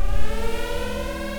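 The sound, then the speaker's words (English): A loud, steady siren sound effect, marking a jargon violation, wails with a sustained, droning tone, with no voices over it. “But let's just get the siren out of the way at the front. It was a jargon violation.”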